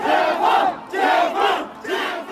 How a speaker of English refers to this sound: But on the next day, crowds took to the street in Urumqi, shouting for an end to the lockdown.